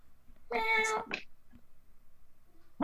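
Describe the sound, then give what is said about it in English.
A person does a single drawn-out meow imitation, clear, followed by a short vocal trailing sound and quiet, with another voice sound beginning right at the end. “A meowing noise again.”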